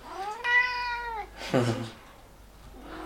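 A cat meows twice: a long, steady, drawn-out meow followed by a shorter one that slides downward, then quiet room tone.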